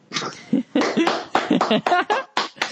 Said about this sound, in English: can I get just a pity lap? Please clap.